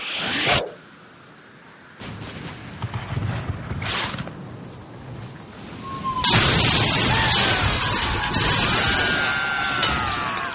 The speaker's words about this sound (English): Quickly fire a barrage into their port side while they reload. Aye, aye, sir. Fire the cannons!